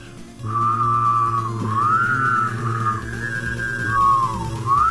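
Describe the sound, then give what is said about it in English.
A person hums a low, steady drone while whistling a wavering, sliding melody on top, both sustained together without a break for several seconds. “Can you guys hum and whistle at the same time?”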